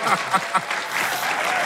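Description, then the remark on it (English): An audience bursts into applause for a NASA satellite image, with a few short whoops or cheers at the start before settling into steady, dense clapping that holds at a fairly loud, even level. “Can we get some applause for that? Okay, yeah, applause.”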